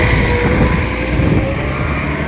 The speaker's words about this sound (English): Sorry about that. That was a bus.